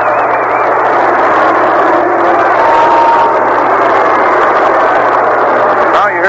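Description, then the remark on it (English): A baseball crowd boos after batter Manoso is hit on the left wrist by a pitch, in a loud, steady roar of many voices that holds for about six seconds without letting up, a low constant hum running beneath it. “People booing without even thinking.”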